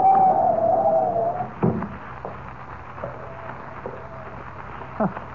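A steady roar of wind from a blinding snowstorm, with a high, wavering howl that rises and fades early on, joined by a few dull thumps, with no one speaking.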